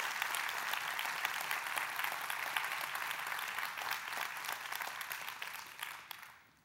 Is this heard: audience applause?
yes